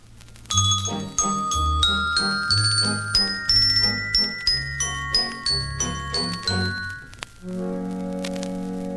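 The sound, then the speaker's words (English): The second movement of a musical piece, symbolizing Mother Nature, played on bells by Alvy Schuster, master bricklayer: a melody with each note struck in a steady, even rhythm with bright ringing overtones, ending on a sustained, lower chord after a brief pause. “The second movement, which symbolizes Mother Nature, who's married to Fred Nature, this movement is played on bells by Alvy Schuster, master bricklayer and local sneak thief.”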